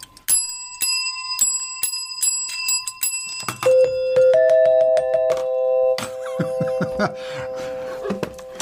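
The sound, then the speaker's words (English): A bicycle bell rings repeatedly in quick bright dings for a few seconds, then a busier clatter of ringing tones and rattling follows, loud with no talking. “How about a bell?”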